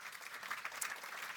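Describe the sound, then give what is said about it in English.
An audience applauds panel guests, including people from Amnesty International Norway, with steady, dense clapping, a continuous crackling patter of many hands at moderate loudness with no voices over it. “Give them all an applause, please.”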